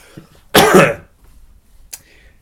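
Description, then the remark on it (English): A single loud, harsh cough bursts out, followed by a brief pause and a short, quieter throat-clearing rasp, with no talking. “Let's get this cough out of my body first so people don't have to listen to the horrors of like what I think is like early onset TB.”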